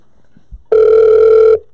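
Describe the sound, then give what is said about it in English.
A single steady, buzzing ringback tone plays for just under a second as a phone call rings out, preceded by a couple of faint soft clicks. “Let me call out the big dogs real quick. Doing something different this time. Let's call Vic.”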